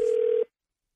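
telephone dialing

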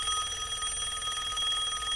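telephone ringing sound effect

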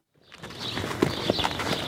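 horse hooves clopping

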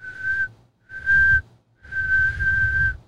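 halftime whistle sound effect

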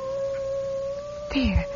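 hound dog howling

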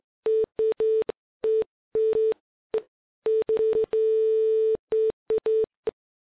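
telephone dial tone

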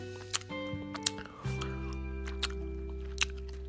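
chewing gum

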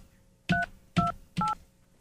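telephone keypad dialing tones

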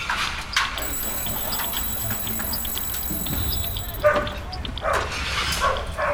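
dogs barking

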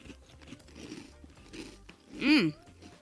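chewing crunchy cereal

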